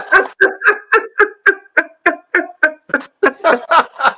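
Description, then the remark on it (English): Four puppies in a dog truck parked outside yip and bark in a rapid, steady string of about fourteen high-pitched bursts, loud, with no talking over them. “You might want to come get your dog truck. It's outside there. It got four puppies in it.”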